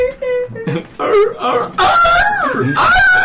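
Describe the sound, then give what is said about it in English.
A person vocally imitates a screaming seal with loud, raspy wails and squawks in several bursts, the pitch bending and rising before a final drawn-out cry, with no speech. “What sort of sound were you wanting to create? A screaming seal, please.”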